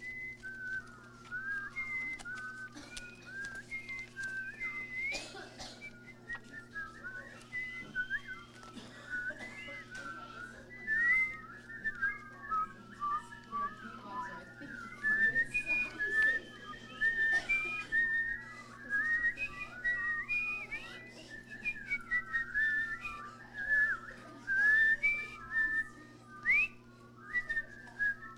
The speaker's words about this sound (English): All right, just do this for me. Whistle while I find it.